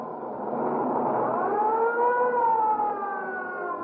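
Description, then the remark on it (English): An ambulance siren wails steadily as it heads to a man run over by a streetcar at the corner of 8th and Hill Street, its tone rising and falling in a smooth sweep, loud, with no voices over it. “The ambulance is on its way now, and be here in 2 minutes or less.”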